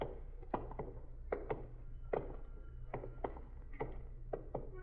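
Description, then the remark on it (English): Sharp knocks strike a window in uneven bursts of two or three, about ten raps in all, moderately loud over a low steady hum with no voices. “Sounds like somebody hitting a window.”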